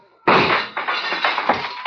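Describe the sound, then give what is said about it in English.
Gunshots fired in the dark during a shootout: a sudden, loud gunshot bursts out of near silence, followed by a sustained harsh roar with several more sharp cracks in quick succession. No voices are heard. “Keep shooting, Saxon, in the dark. You got four shots left.”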